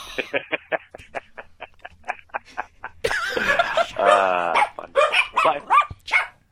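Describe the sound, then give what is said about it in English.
A dog barks in a rapid, steady string of sharp yaps, then breaks into louder, more frantic barking mixed with high, whining tones. “Well, you turned on the dog.”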